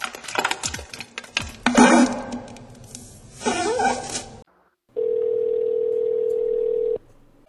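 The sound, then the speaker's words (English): After a few seconds of busy, clattering noise and a short silence, a loud, steady telephone dial tone from a dropped call hums at one unchanging pitch for about two seconds before cutting off abruptly. “I don't know what happened. The call was dropped.”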